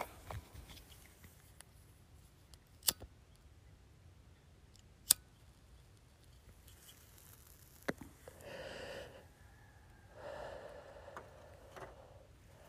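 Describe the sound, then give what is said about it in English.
A cigarette being lit at Beaver Creek at about 7:30 in the morning, around twilight with frost set: three sharp, isolated lighter clicks spaced a couple of seconds apart, then two soft breathy hissing bursts, all fairly quiet over a low background rumble, with no talking. “Excuse me while I light this cigarette.”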